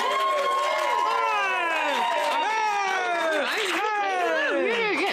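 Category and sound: crowd, applause and cheering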